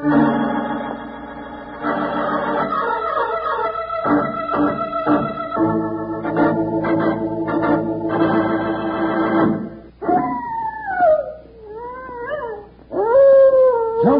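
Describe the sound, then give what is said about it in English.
Orchestral music plays, then gives way to a prairie wolf's hungry howl: a few long, wavering cries that rise and fall in pitch, fairly loud, with no talking. “That's the howl of a prairie wolf, Charlie, and a hungry howl at that.”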